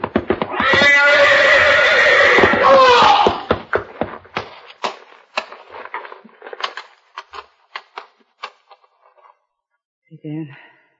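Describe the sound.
A horse lets out a loud, long whinny lasting a few seconds, followed by a series of sharp knocks and thumps of hooves stamping on wood, then a brief voice near the end.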